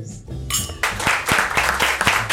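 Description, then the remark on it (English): A small group claps in a slow, steady rhythm, each sharp clap standing out over a bed of softer scattered clapping, building into applause after a brief quiet start. “That was really a good slow clap.”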